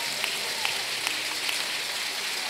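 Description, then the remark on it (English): An audience claps steadily, a dense, even patter of many hands with a few sharper slaps standing out, keeping up without a break and with no voices heard. “So can you stand up, please, and let's give them a big clap off and a praise and thank God for them, for all their work and contributions.”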